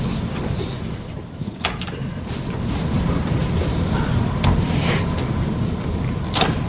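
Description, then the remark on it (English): A door is slid and pushed shut over a steady low rumble, with a few sharp clicks and knocks spread across the moment and no one speaking. “I'm going to shut this door here.”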